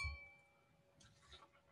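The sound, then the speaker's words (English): Glasses clink together in a toast, a single bright, high-pitched ring that hangs for about a second before fading into a brief, softer clatter. Quiet overall, with no one speaking. “It's Friday night, and that means it's time for another episode of Agile Acquisition and Alcohol. Cheers.”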